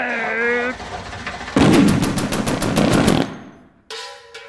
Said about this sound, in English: All right. Stand back. One fart rifle coming up.